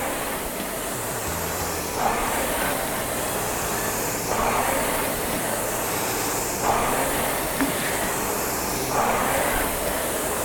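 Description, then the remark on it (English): A RowErg rowing machine's flywheel whirs steadily with a rushing, airy hiss during a power workout at a stroke rate of 26, swelling in a whoosh roughly every two seconds as each stroke drives it. No one speaks. “Workout 20 - RowErg - Four Squared For Power”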